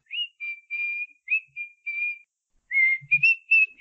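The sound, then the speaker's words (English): A person whistles a bird-like tune of short, sliding notes in quick phrases, then a brief pause before a livelier run of chirpy trills, clear with no talking. “The birds. Whistling a little song.”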